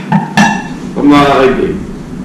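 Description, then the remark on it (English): Two quick, bright clinks of glasses touching in a toast, ringing briefly one after the other, followed by a voice speaking. “Here's to the Cheeto. Here's the impersonation of it. So back there, everybody. No. We're clink.”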